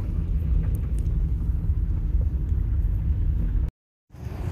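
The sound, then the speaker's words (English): A steady car rumble rolls along as the vehicle drives through muddied, slushy town streets to an office on Quebec Street. The sound cuts out briefly near the end, then the engine noise resumes. “Apparently he worked in an office down on Quebec Street, so I got in the car and I drove through the now muddied, slushy streets over to Mr.”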